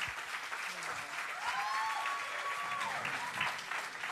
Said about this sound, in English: Can we just keep on clapping for them? Keep on clapping for them. Keep on clapping for them. Keep on clapping for them. Can we just keep on clapping for them?